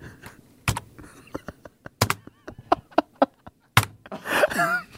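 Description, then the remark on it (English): An imitation of a man's slow typing on a computer keyboard: sharp single key clicks spaced out with long pauses, a few louder strikes among them, then a short squeaky, breathy noise at the end. “So well, I could hear him doing some work in the background, and I have not heard a slower man type in my... It was something like this.”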